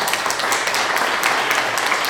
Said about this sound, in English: Round of applause. He's literally giving you a round of applause. We need one of them applause tracks.